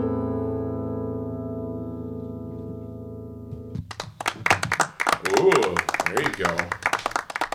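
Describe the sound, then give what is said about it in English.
A sustained, steady musical tone rings out and cuts off, then a small, scattered smattering of applause breaks out, irregular claps from a few people with some voices mixed in. “Smattering of applause.”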